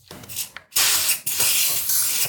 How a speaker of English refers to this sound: How do you want me to grease it? Oh, non-stick cooking spray.